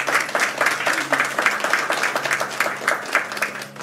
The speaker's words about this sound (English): Yeah, you can clap.